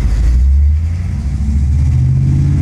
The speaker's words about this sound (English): So this sound we're about to hopefully hear in the background. Oh, there it is. I hope you hear it. That's our previous guest, Will's Trans Am.